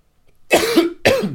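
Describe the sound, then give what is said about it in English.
Two raspy coughs in quick succession, the first longer and the second sharper, loud with no talking around them. “This cough is annoying.”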